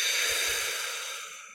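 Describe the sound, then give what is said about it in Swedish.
A long, slow, deep breath pushed out after holding it, a soft airy rush that slowly fades toward the end, with no talking. “Och sen långsamt andas ut. Låt allt komma ut.”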